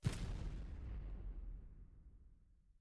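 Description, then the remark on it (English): A single heavy explosion outside bursts at the start, rocking the ground, then a deep rumbling roar lingers and slowly fades over a few seconds, with no voices. “Outside, you hear a large explosion that sort of rocks the ground.”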